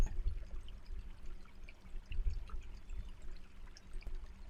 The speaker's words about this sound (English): And lo and behold, you discover a beautiful creek that is gurgling and chuckling by. The water cascades constantly over the rocks like a dance. And the water's surface glimmers and glows. Being aware of the water as it streams on by,